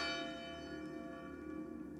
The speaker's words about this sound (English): I heard a bell beat from the church. 11 already.